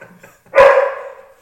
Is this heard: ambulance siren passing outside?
no